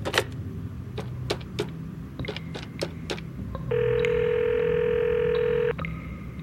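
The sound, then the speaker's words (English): In an office, a series of short clicks and beeps as a phone number from a computer system is dialed, then a steady, fairly loud ringing tone holds for about two seconds before cutting off. No one speaks. “Back in my office, I quickly consulted my computer, then picked up my phone and called the number we had in the system.”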